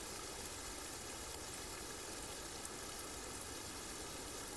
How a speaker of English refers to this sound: So allow the sound of the rain to calm and soothe you. Thank the rain for cooling, nourishing, and cleansing you.